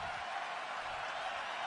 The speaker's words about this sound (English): The crowd now getting even more loud for Rick. And they've now got a close-up on him up on the Jumbotron, and you can see that Rick is definitely taken back by the moment.